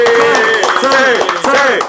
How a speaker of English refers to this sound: Good job, Ty. Right? Good job. Let's clap it up for Ty. Yay!